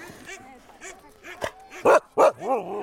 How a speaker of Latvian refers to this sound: Kisa, kas ir pirmā, un zilacainais Kato un mazā Parīze, kas tur bļaustās, tas ir bērnu dārs. Šiem suņiem vēl nav gads. Viņi nedrīkst slodzē vilkt kamanas, viņi nedrīkst piedalīties sacensībās, jo to drīkst tikai no 18 mēnešu vecuma.